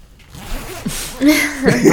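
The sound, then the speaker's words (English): A quick zipper pull on a small green pouch about the size of a book, with a raspy, ratcheting texture, opening in a couple of short bursts that get louder toward the end, with a soft rustle of fabric. “I'm gonna open up the green one.”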